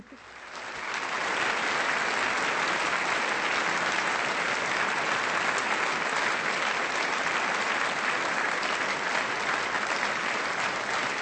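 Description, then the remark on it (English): Sustained applause from a sizable crowd, swelling in over the first second and then holding at a steady, loud level with dense clapping throughout, no voices standing out. “You guys deserve the applause.”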